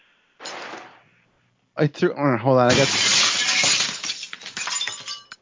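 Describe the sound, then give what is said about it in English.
A thrown shoe lands in a pile of broken glass with a loud shattering crash and a long tinkling scatter of shards. A brief rustle comes first, and a voice cries out just before the crash. “why did you tell me to throw the shoes into the glass?”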